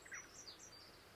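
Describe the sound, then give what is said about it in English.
Small birds chirp and twitter softly outside a house in Somerset, a few quick high notes in succession, faint against a quiet background with no voices. “I'm recording in the guest room of my house in Somerset, and there are some sweet little birds singing outside.”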